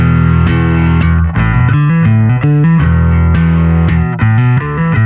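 A heavily distorted electric guitar plays a driving riff on its own, chugging low notes broken by sharp, bright attacks, loud and dense throughout with no voices.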